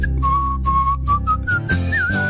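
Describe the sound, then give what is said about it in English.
A person whistles an imitation of birdsong: several held, clear notes that step upward in pitch, finishing with a quick warbling trill, all over a steady low background. “Sing like a little bird.”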